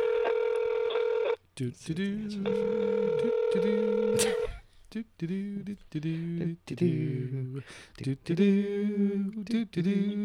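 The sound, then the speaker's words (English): Two long, steady ringback tones of an outgoing phone call sound clear, separated by a short pause, then a voice starts talking over the line. “She's totally not gonna answer the phone.”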